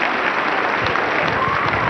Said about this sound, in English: Clap for Jesus Christ. Apprécie pour Jésus Christ.